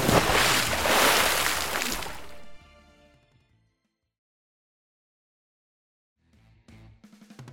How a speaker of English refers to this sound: Belly flop!